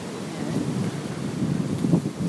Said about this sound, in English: It's quite windy, isn't it? Do you think it's... I think it's going to be too windy.